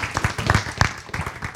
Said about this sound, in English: Let's have one more round of applause for Marshall Brown.